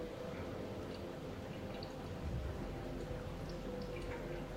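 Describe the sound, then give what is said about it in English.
A steady, gentle stream of water pours onto pour-over coffee grounds, around the edge and then in the center up to 175 grams, a soft continuous trickling and splashing with faint drips, fairly quiet, with no talking. “Now, we're going to pour up to 175 grams, pouring around the edge, and then finishing with the center pour.”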